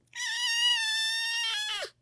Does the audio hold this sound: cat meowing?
yes